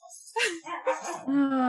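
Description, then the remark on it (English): Dogs play-fighting on a bed in a room, a quick run of growls, yips and grumbling barks, ending in a longer drawn-out whining vocalization. No one speaks. “So, and also, my husband's out of town, so the dogs are locked in the room with me, as you can probably hear them fighting on the bed.”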